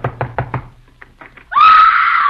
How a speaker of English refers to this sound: Well, here's Tessie Tinfoil's house. I hope she's home. Go ahead and knock.